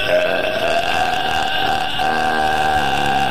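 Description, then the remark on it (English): A woman lets out a long, loud, drawn-out burp, deep and rumbling with a strained, tonal quality, sustained steadily for several seconds. “I do want to hear … burp. There she is. She's got some meaty burps there.”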